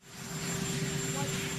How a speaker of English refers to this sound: Some of the audio quality in this piece is poor due to the surrounding interference from the presidential helicopter.